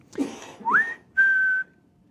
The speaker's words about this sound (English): We would want to be able to call her, and she would come right away, and it has worked. We have two calls. One is a whistle.